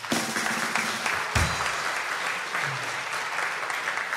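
A crowd claps steadily, a dense wash of overlapping hand claps at full loudness that holds without a break for several seconds, with no voices rising above it.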